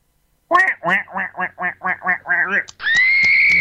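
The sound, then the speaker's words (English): A person imitates a seal with a quick series of about nine nasal, honking barks that end up sounding like a duck's quacks, then one sustained, strained high squeal. “Can you do an impression of a seal?”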